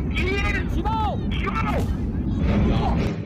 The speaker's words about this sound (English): They're blowing them up. Well, at least in this case. You're listening to the sound of a forest of half-built high-rises in southwest China crumbling after a demolition explosion.